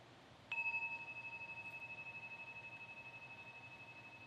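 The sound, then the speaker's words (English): A single meditation bell is struck once and rings out with a clear, steady metallic tone, its sustained overtones pulsing gently as the sound slowly fades over several seconds with no talking. “So as we listen tonight, just as a way to keep coming back, you might just listen to the sound of the bell as an invitation into here-ness.”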